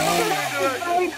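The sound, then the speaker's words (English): A chainsaw revs in a steady, raspy buzz whose pitch sags slightly, then lifts again for just over a second before cutting off abruptly. “I'm going to chainsaw this stupid thing right out.”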